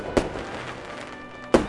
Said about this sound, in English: When my wife and I first started dating in the summer, we would go see all the local fireworks and enjoy the patriotic celebrations around the 4th of July.